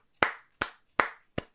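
Four sharp handclaps in a slow, steady rhythm, each a crisp smack with a short decay. A brief, sparse round of applause congratulating a producer on graduating college, with no voices.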